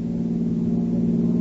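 A steady, low engine drone of a car on the move, heard continuously at moderate volume with no voices and little change in pitch.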